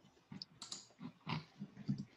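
A series of faint, irregular computer mouse clicks, soft and slightly muffled, tapping out several quick presses over a couple of seconds with no voices.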